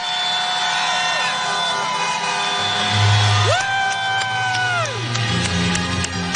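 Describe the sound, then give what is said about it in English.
A chorus of car horns blares at once from people in their cars at a drive-in rally as Barack Obama appears, long overlapping blasts at different pitches held steady for several seconds, with a background roar of a crowd and cheering. “they honked their horns when Barack Obama appeared”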